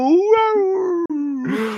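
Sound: voice imitating a howl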